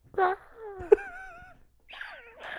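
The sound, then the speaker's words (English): A person imitates a seagull with a few squawking, wailing vocal cries that slide in pitch, starting with a sharp yelp and ending in two rougher, rising squeals, fairly loud and without other talk. “That was a pretty good seagull, man.”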